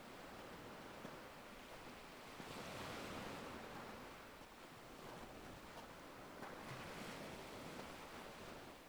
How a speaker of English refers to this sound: You can hear the sound of the waves crashing onto the shore.